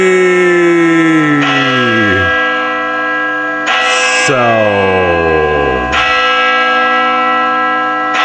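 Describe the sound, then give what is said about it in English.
A large clock tower bell chimes in slow strokes after the tower clock was reset and running again, each loud clang ringing out with a long shimmering decay and a falling, wavering hum before the next strike rings over it. “Okay, so they used their mobiles to set the time on the four clock pieces on each side of the tower and tightened everything up, got everything running, and now we've got a clean clock telling us the exact time”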